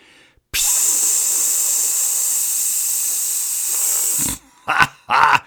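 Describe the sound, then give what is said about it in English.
A loud, steady hiss of air escaping from a bicycle front tire punctured by a goat head thorn, in a driveway early in the morning, runs for nearly four seconds, then cuts off, followed by two short bursts of sound. “After a few seconds, she had a very flat front tire.”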